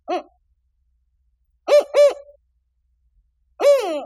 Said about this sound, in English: The territorial call of a spotted owl is unmistakable. It's four notes. One short hoot, followed by two evenly spaced hoots, then a final hoot trailing off.